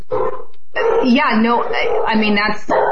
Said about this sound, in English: Sorry, my dog. I'm sorry.